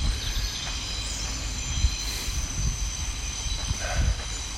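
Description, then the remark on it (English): A train rumbles past on a train line next to the edge of a reserve, a steady low roar with clattering wheels and faint metallic squeals, while insects chirp thinly in the background. “Just right on the edge of the reserve here next to a train line, so you may have heard the train coming through.”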